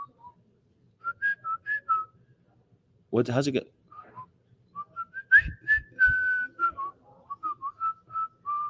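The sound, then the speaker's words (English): Someone whistles a bouncy march melody linked to the film Bridge Over River Kwai, a run of short clipped notes and longer held tones at a bright pitch, briefly interrupted by a spoken question before the tune resumes. “They didn't sing that in the Bridge Over River Kwai.”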